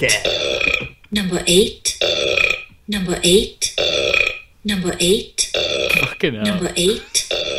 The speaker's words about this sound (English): You need a burp. You need a burp.